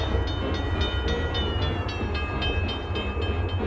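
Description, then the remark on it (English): A steam train runs steadily, with a deep rumbling undertone and a quick, regular chuffing beat, while thin high metallic tones ring above it. No one speaks. “America fell in love with trains and the men who ran,”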